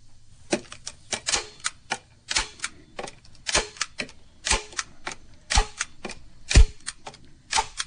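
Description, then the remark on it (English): A stapler snapping down again and again, a quick uneven run of sharp mechanical clacks, crisp with brief quiet gaps between. No voices. “Here comes a stapler.”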